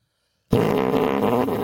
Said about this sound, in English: Was there fart sounds coming out? No fart sounds.